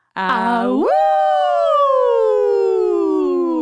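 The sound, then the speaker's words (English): A person imitates a werewolf howl: a single sustained vocal wail that starts low and rough, swoops sharply upward, then slowly glides down in pitch as it fades, loud and alone. “That was like a special werewolf howl.”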